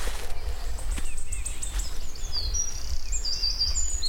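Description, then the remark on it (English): A wood warbler, a quite big yellowy-green warbler about 6 feet away, sings high, thin trilling phrases and whistled notes over a steady low rumble of wind, with no talking. “That would be about the best ever recording of wood warblers I'll ever get.”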